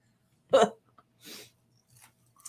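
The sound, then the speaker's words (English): Open-mouthed chewing of a crunchy insect: a loud wet crunch, then three softer crackling bites spaced irregularly over a couple of seconds, with no talking. “I don't usually chew my mouth open, but I thought it'd be more dramatic.”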